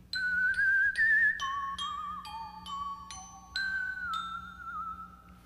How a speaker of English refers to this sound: Also, if you want to whistle, there's a lot of whistle parts. There's it goes like this.